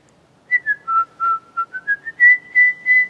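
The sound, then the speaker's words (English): A clear, tuneful whistle of about a dozen short notes, dipping lower then rising and holding steadier toward the end, heard alone with no talking. “Hear the whistling just now?”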